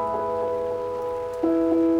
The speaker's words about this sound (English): I just want to stop there and give us a chance to listen to this rain.